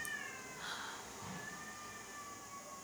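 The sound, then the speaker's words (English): Cats in heat yowl outside a window in Taipei in long, wavering, drawn-out cries that overlap and slide in pitch, fairly faint against a steady background hiss, with no one speaking. “I just want to ask, can everybody hear the cats outside of my window?”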